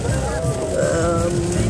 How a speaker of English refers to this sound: It is brown water. And that ain't good though. Yeah, when the cars are coming towards us with the water splashing. Yeah. We're currently going in the storm right now.